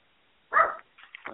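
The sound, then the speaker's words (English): A dog barks once sharply at a knock on the door, followed by a couple of shorter, softer yips or grumbling barks, with no talking. “You got a dog? Yeah, I got a dog. Somebody knocked at the door.”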